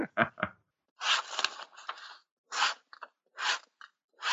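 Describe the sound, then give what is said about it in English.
Rough, scratchy pen strokes on paper as a graph is drawn come in irregular bursts, some short and sharp, others longer drags, fairly loud, with brief silences between and no voices. “Get a pen and paper, because I'm not doing this shit.”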